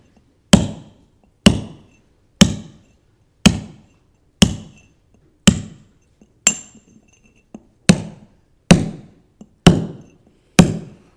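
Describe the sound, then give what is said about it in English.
A hammer strikes a chisel about eleven times in a steady rhythm, each blow a loud, ringing metallic clink that fades quickly before the next. No one speaks. “It's going to be like this hammer.”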